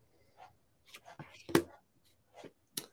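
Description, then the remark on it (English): Tarot cards being shuffled: a handful of soft papery rustles and flicks, with two sharper snaps standing out, all fairly quiet with brief pauses between them. “Doing a little shuffle here.”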